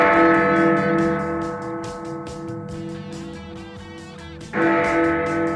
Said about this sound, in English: Couple of bells.